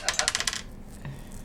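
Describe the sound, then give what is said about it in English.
Dice clatter and tumble across a hard tabletop in a quick burst of six or seven sharp clicks, then settle into quiet with a faint low hum. “Roll the dice.”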